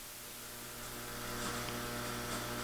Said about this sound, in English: That's my refrigerator making that loud ass noise.